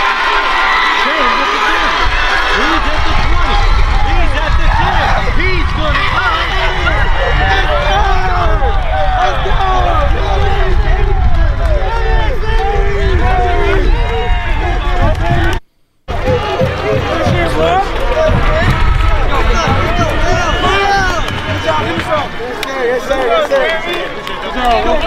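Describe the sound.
A loud, steady crowd at a youth football game, as a toddler with Down syndrome playing for the Wildcats takes the handoff and runs in for the score, fills the whole recording, with many overlapping voices, shouts and cheers, broken once by a sudden split-second cutout.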